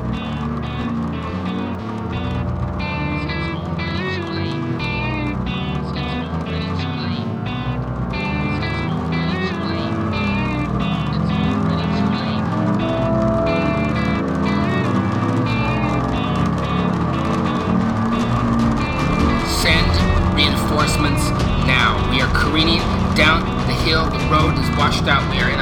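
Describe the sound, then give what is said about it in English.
A car engine drives steadily in the rain, a loud continuous rumble with shifting revs and a rougher, rising whine toward the end, while a voice talks faintly underneath. “My next move is to see if I can drive the car straight through it.”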